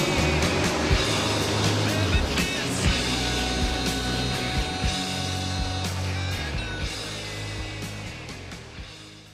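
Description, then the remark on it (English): A loud, dense roar of many NASCAR stock car engines running together as the pace car pulls in and the green flag starts the race at Darlington, steady and layered with occasional throttle surges, continuous for the whole stretch. “The pace car is in. Green flag. NASCAR is back.”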